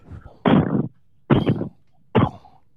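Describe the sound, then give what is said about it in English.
A house's front door creaks slowly open in three separate drawn-out groans, each loud and raspy, with short silent pauses between them. “He slowly opens his front door.”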